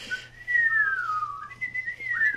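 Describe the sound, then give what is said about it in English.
A person whistles to call back a lost canary: one long, wavering note that slides gently down and then lifts again, clear, with no one talking over it. “Before a lost canary, I lost my canary, and I want to whistle to call the canary back.”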